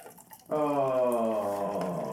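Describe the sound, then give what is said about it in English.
Jim Beam whiskey pours into a Solo cup, starting after a brief quiet moment and continuing as a steady, resonant stream with a hollow, slightly tonal ring. No one speaks. “Everyone get ready for the sound of pouring.”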